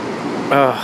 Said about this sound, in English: And meanwhile, the ocean is just doing this constantly, making this noise.